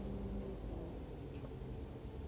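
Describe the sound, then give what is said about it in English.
A car engine idles and revs, a deep steady rumble that holds fairly loud for about two seconds with no voices over it. “Is that your car?”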